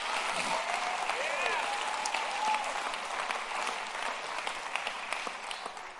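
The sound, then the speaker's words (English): An audience claps their hands in praise, steadily in a dense, continuous wash of applause, with a few faint voices and whoops rising through the clapping before it thins slightly toward the end. “Come on, clap your hands to Him and praise Him.”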